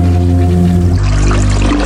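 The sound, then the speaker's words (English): A toilet flushes: a steady low droning hum gives way to a loud, turbulent rush of water that keeps churning to the end, with no one speaking. “It's the final flush.”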